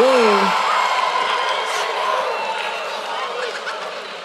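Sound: crowd cheering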